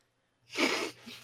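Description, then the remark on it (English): A single sneeze bursts out sharply after a moment of quiet, followed by a softer breathy trailing puff, with no talking around it. “God bless you.”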